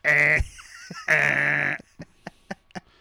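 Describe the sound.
A voice imitates the meow of Muffin, a scrappy cat, with two loud, drawn-out, nasal cries, almost like a bleat, then a string of soft, irregular clicks.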